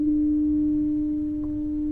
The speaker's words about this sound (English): When the foghorn sounds, it's in a time when you're limited visibility, and it is a situation where you're heading into danger.